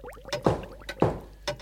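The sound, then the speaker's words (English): Three sharp, loud blows of a hammer striking the floor, done to locate gas pipes by ear, spaced about half a second apart, each a hard thud with a brief ringing tail and no voices. “I shall now hit the floor with the hammer.”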